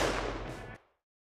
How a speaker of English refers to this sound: He grabs his gun and runs over to the window. He points it out the window. He squeezes the trigger.